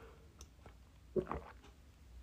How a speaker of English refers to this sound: But I have got a cup of tea. Let's all have a sip. If you're sitting with a cup of tea, cheers.